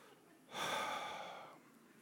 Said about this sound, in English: I'm going to practice some kind of breathing technique.